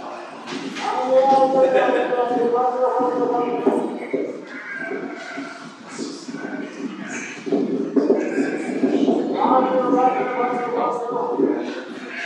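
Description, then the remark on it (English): A flock of sheep bleats in overlapping calls, loud, over a steady shuffle of many hooves as the animals draw near in the fog, responding to their shepherd. “And now, regardless of the fog, the sheep respond.”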